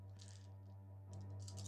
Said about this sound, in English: All right. Hold on. He's trying to find the lucky dice.